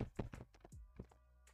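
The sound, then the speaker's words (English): A voice imitates a doorknob rattling against a door: a quick, uneven string of clunky, knocking thuds, about eight beats in a second and a half, fairly loud with no talking. “This is what it sounded like. The doorknob shaking against the door.”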